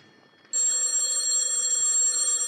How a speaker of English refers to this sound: Telephone's ringing